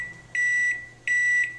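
Two loud, steady electronic beeps from a microwave oven after heating a hot dog and bun without a plate for one minute, each beep lasting under half a second with a short pause between, with no talking.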